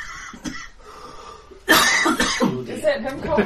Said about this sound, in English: Is that him coughing or you coughing? That's the GM.